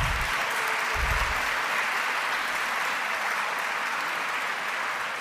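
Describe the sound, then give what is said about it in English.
An audience applauds steadily to thank the Harvard Law School Association of Maryland for co-sponsoring the evening's event, many hands in dense, rapid clapping sustained evenly across the whole stretch with no voices rising above it, a couple of low thumps near the start. “Everybody else can applaud.”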